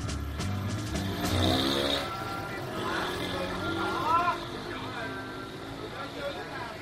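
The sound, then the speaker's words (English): A moped engine hums steadily while riding along a coastal road in Vietnam, with wind rush and passing traffic noise, and indistinct voices briefly audible in the background. “I set off by moped in search of a popular waterfall.”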